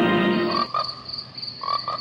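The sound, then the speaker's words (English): Frogs croak in a loud chorus in the trailer for the American International Pictures film Frogs: a deep, buzzing rasp at first, then shorter repeated calls over a steady high-pitched trill, with no voices. “American International Pictures presents Frogs, the story of the day nature strikes back.”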